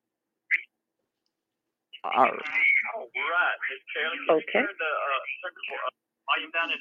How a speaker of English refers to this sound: could you turn the volume down in the background? I'm kind of getting echo on it there.